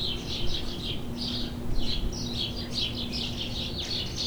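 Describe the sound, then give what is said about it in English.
Northern cardinal song: a string of bright, high whistled phrases repeating steadily for several seconds over a faint, constant low hum, with no voices. “The northern cardinal, for example, has expanded its range northward over time, and has now been consistently present in the southern parts of Canada for about 100 years.”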